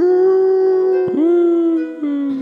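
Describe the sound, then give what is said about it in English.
A voice imitates a dog's howl: one loud, sustained, steady wail, held alone for over two seconds, briefly breaking twice before trailing off slightly lower. “smiles down at the dog and pats it sort of on the shoulder and says, I think we'll get along fine. He just gives it...”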